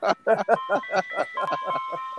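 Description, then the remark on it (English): An ice cream truck jingle rings out in a steady run of bright, bouncy pulses, with sustained tinny tones layered underneath, moderately loud and fairly close by. “Yeah, we're on site right by an ice cream truck.”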